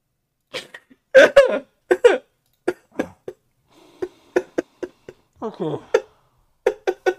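A loud fit of choking and coughing: irregular bursts of hacking coughs with strained, gasping breaths and a wheezy, sputtering stretch between them, no speech.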